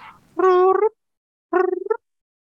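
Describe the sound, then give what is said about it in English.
A person makes two short, warbling vocal bursts, trying to imitate a chirping cricket; each burst is mid-pitched and buzzy, ending in a quick fluttering trill, with a brief pause between them. “I'm trying to do a cricket.”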